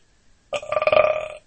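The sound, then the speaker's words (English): A single loud, drawn-out burp lasting about a second, with a rough, rippling vibration throughout, heard on its own with no talking. “So you let out a real good deep burp.”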